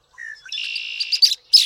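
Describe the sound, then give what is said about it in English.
A red-winged blackbird sings alone: a brief low introductory note, then a loud, buzzy sustained trill, followed by a few sharp, harsh chips. “As a year-round resident of North America, the red-winged blackbird has the potential to connect us all, no matter where we live.”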